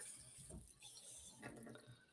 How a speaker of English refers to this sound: I'm gonna add a tiny bit more hot water to this. It's a little thick. half a tablespoon.